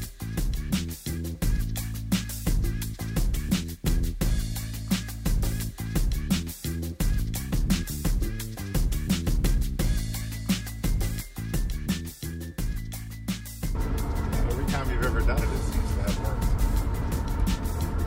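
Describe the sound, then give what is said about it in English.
Steady, loud road rumble from inside a moving car on a road trip to Philadelphia, with frequent soft thumps and clicks over the drone. Near the end it shifts into a brighter, hissier roar. “So hang in there for, you know, and just kind of bear with it, because there is a little, it's not really white noise, but it's background noise from being in a car.”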